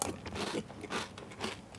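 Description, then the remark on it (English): A man chews crunchy Calbee granola at night: a series of crisp, crackling crunches in an uneven rhythm, about four bursts in under two seconds, with no talking. “It's just the guy eating Calbee granola at night.”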